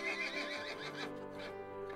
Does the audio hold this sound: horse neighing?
yes